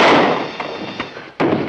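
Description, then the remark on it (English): A gunshot that kills a man in a Superman adventure: a loud, sharp gunshot bursts out and rings away in a long decaying tail, followed by two softer thumps and then another abrupt, forceful crack near the end. No one speaks. “That's what usually happens when you connect with a bullet.”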